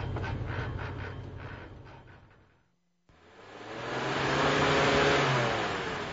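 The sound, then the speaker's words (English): A failing truck engine chugs with a rough, rhythmic knocking as the truck pulls over, winding down to a brief near-silence, then a loud, steady rushing roar swells up and holds. No one speaks. “I got to tear the pan off and get the rod out.”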